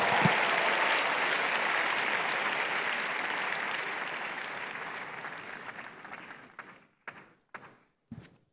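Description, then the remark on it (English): A church audience at a morning worship service applauds in a dense, steady wash of clapping that slowly fades over several seconds, ending with a few isolated, separate claps. “Make your hand clap bigger and better this morning.”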